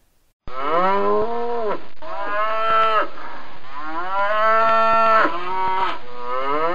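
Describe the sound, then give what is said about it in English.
A cow moos loudly and repeatedly, several long drawn-out calls in close succession with strong harmonic tones, with no other voices. “That's right! It's a cow.”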